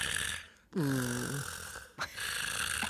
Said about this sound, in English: He just rolls over in bed and goes to sleep. And then he starts to snore.